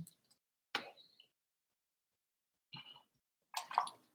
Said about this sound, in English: I'm going to take a little bit of a break and drink some water.